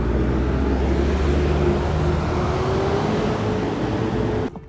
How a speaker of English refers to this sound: But can you hear that? Catch a drift of all this noise of the traffic and everything? Hope you can hear me okay. Because I'm competing, that's for sure.